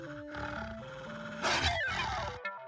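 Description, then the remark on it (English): A tinny, synthetic melody from a computer mind game steps along, then loud snarls and roaring growls burst in as wolves attack and eat the player's character, cutting off abruptly after about a second. “I get past the giant's drink and the wolves eat me?”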